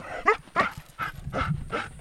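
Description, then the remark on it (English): A tracker dog barks five times in a steady, quick rhythm, each bark short and sharp, moderately loud, with faint rustling underneath and no voices, as it follows a scent up a hill past thorned bushes and through brush in southern Kenya during a ranger training exercise. “Winding up a hill in southern Kenya, a tracker dog is guided by a scent, past thorned bushes and through brush.”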